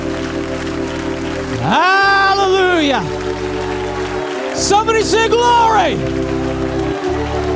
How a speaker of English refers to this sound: Just give him another hand clap of praise.